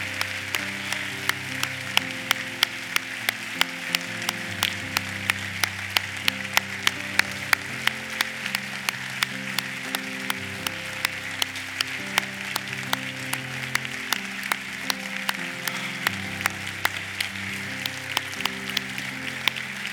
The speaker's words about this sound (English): we're going to give them a cheer as they go this way. Let's give them a hand. God bless you. Let's give them a hand this way.